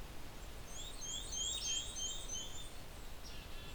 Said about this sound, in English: Black-capped chickadee behind me.